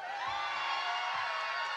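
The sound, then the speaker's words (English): An audience screams, cheers and jumps up and down for five seconds on request, a continuous, dense roar of high-pitched voices, steady and loud for the whole short stretch, with occasional low thumps underneath. “I'm giving you 5 seconds to scream and jump up and down.”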